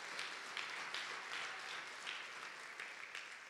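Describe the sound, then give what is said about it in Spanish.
An audience at a sermon breaks into sustained applause for the Lord, a dense, even wash of many hands clapping at once that holds steady for several seconds with no voices over it. “Si lo cree, dale un aplauso fuerte, Señor.”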